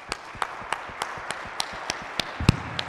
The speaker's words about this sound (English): So let's give these guys a big round of applause.